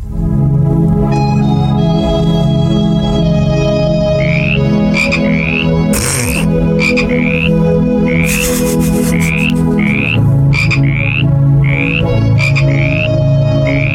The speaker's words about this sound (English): This person, Dr. Rowley, said one species of frog, the spotted tree frog, will appear on the album.